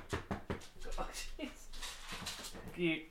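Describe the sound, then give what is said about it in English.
A dog moves around on a hardwood floor, its nails clicking and tapping in quick irregular bursts, with soft thumps and a brief high whine near the end. “This is why when you have a dog and you have hardwood floors, that's the sound you get.”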